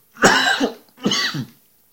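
Two harsh coughs in a closed, well-insulated room, one right after the other with a brief pause between them, each a loud rasping burst; no talking.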